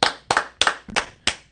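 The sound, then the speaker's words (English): A single person claps about six times in a steady rhythm, roughly three claps per second, giving a round of applause for Glover's fight performance. Each clap is a sharp, bright smack, with no voices or other sounds around them. “Now, I'm going to give him a round of applause for that performance.”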